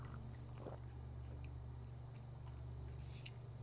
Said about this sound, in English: Oh, this homegrown's great. I love homegrown. I sip the coffee.